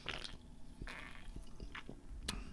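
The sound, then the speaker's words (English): Sipping fizzy LaCroix seltzer water from a freshly opened can in Eugene, Oregon, on a cloudy day: a few wet slurps and soft mouth clicks with brief bursts of hissy carbonation, quiet, with no talking. “As I say, sip in some nice sizzles.”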